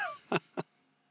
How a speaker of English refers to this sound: You get my breathing like.